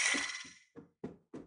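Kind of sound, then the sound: household object, knock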